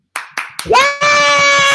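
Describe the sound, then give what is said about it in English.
A clap track sound effect played to celebrate reaching 100,000 plus: three sharp, evenly spaced claps, then a bright tone swoops upward and holds, joined by a loud, dense cheering roar that carries to the end. “So we want to put in the clap track on that.”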